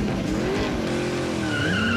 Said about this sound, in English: The brightly painted food truck speeds past the Guardians and careens towards the raging magma squid.